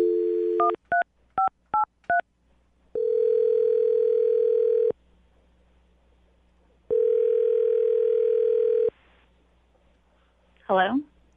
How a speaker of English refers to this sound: Here we go. I'm going to dial the phone number and let you do your thing.